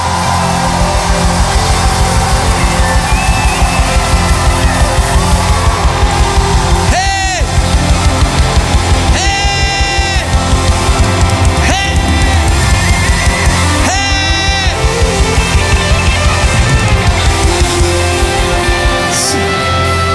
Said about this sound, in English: Then the Bible says, shout to the Lord, all the earth. Break out in praise and sing for joy. We praise with shouting. One, two, three. Praise!